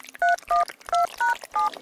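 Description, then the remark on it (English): Five short electronic keypad beeps from a brand new, extremely sticky phone being dialed to call Tom Hanks, each a clean two-note tone, pressed in a quick, fairly even rhythm with brief gaps, clear with no one talking. “I'm now going to phone them using my brand new and extremely sticky phone.”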